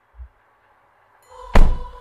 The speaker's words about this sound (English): "Oh, sure, why not? Get in," he said, and opened the door for her.